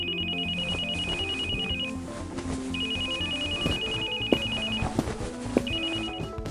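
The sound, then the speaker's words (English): A phone ringtone trills in three repeating bursts of rapid high beeps, fairly loud, with a busy background of clatter and low hum underneath and no one speaking. “Not excusing him to take that call.”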